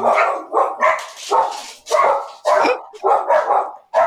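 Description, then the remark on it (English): Dogs bark loudly and insistently, about eight sharp barks in quick succession with brief gaps between them, and no voices over them. “The dogs of war barking at Evan Grant's door.”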